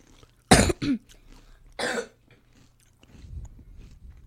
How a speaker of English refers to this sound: I think I... No. I literally almost coughed up a chip.